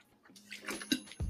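Someone takes a quiet sip of water, with soft wet mouth clicks and a low gulp near the end, and no talking.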